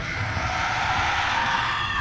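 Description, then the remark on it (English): A siren sea creature's shriek as bolts of magic slam into it underwater, loud and unbroken for about two seconds, harsh and piercing with a washy, reverberant, muffled underwater quality and a low rumbling churn beneath it. No one speaks. “As they slam into this siren, you see this inky black blood is coming from this creature now as it shrieks, and its shriek just reverberates through this water.”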